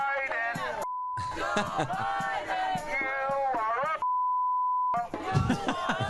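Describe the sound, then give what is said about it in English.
A steady electronic censor beep cuts into excited shouting speech twice: a short tone near the start, then a longer sustained one of about a second before the voice returns. “This is the beep all the fucking time.”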